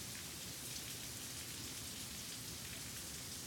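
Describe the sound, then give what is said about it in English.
Steady rain pours down onto a lawn, a continuous dense hiss of drops with no pauses, even in loudness throughout, with no voices. “I had almost started watering, and then it started raining.”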